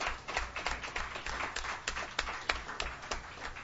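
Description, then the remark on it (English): A crowd at a Sunday-night show applauds the sound and door crew with dense, overlapping claps that stay steady and fairly loud for several seconds, with sharper individual claps popping out of the wash of sound. “Give them a big hand.”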